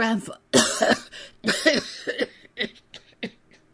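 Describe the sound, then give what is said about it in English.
A voice acts out a coughing fit that cuts off what he was saying: two harsh, heavy coughs followed by a run of shorter, weaker hacks that trail off, with no other sounds around them. “A fit of coughing put an end to what he was saying, but Eustace saw that the hand was still writing.”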